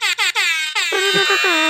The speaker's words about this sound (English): You could have picked some sort of Game of Thrones themed song, you know. Well, that's all copyright, so just going with an air horn.